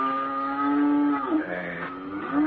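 Cows moo in a long, drawn-out low call that bends in pitch, with a second lowing sound following close behind, steady with no talking.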